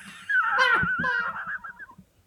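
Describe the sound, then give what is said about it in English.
A small dog whimpers, a thin, high, wavering whine that swells briefly and then trails off in softer little whines over a couple of seconds. “So is this dog a good judge of character like Bobo was?”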